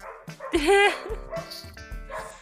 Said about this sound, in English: Oh my god, is my can you hear my dog like loud? Yes. This is like really loud. I don't know why she's being so loud right now. She's not usually this loud, especially when I'm recording.